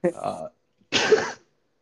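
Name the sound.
sneeze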